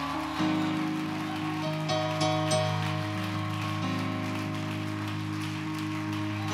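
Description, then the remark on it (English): An audience claps steadily in a dense, crackling wash of applause, a hand clap of praise to the Lord after a baptism, playing out over sustained organ-like chords that change a few times, with no clear speech throughout. “Give the Lord another good hand clap of praise.”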